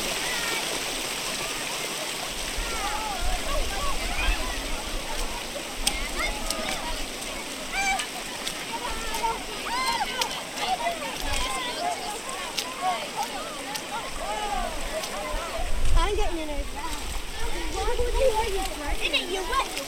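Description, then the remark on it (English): Children's excited voices and shouts mingle with steady running water and repeated splashing as they explore and splash their way through a brook, the busy outdoor scene filling the whole recording at a moderate level. “some of them started kind of exploring and splashing and getting their way through.”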